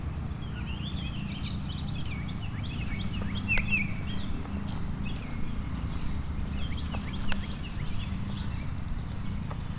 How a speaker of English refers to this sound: So I've got a clay-colored sparrow. That's what I've got.